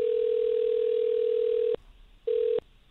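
A phone line ringing out as the 93Q radio show in Houston calls a listener: a steady electronic ringback tone holds for nearly two seconds, pauses, then a second ring begins and cuts off quickly. Clear, with no talking.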